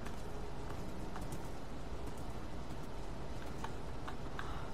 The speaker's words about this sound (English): God fucking damn horse. Goddamn horsey bitch.